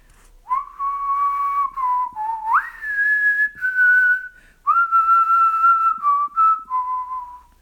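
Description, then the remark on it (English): A person whistles a movie theme tune alone, clear, with sustained pitched notes that glide up and down across several phrases and brief pauses between them. “I'm going to whistle now, so close your ears.”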